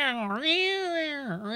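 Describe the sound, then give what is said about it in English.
A person's voice imitates a cat's fighting yowl: one drawn-out, wavering howl that dips, swells upward, then sags and rises again, loud, with no other talking. “that cat was making fighting sounds the whole time. And cats don't do that. They don't just walk around going.”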